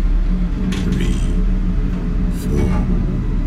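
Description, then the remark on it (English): A steady, low mechanical whir of a lift mechanism hums evenly throughout, with a few faint metallic clicks and rattles surfacing briefly over the drone. “The only sound in the lift was the gentle whir of the mechanism.”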